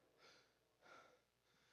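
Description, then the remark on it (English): A few sharp, airy breaths drawn in through the nose or mouth, the middle one strongest, with no speech around them. “And you start breathing in.”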